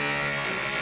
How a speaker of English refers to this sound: that's the door creaking.